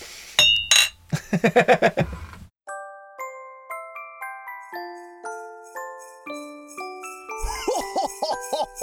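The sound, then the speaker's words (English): Glasses clink together in a toast, a quick flurry of bright, ringing taps, followed by a gentle tinkling chime melody of clear, stepped notes. “Cheers, boys.”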